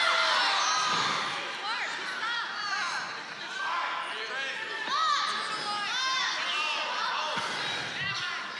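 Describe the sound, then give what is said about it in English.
A large audience yells and cheers continuously, many voices overlapping in a loud, sustained roar with rising shouts throughout. “I just love that you're all yelling right now.”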